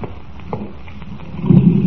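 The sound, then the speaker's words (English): A car engine starts with a few scattered knocks and clicks, then a low rumble swells louder toward the end as the car pulls away from Happyland amusement park, heading for Carnival Town on the Loganville Road. No one speaks. “Now, here's my car.”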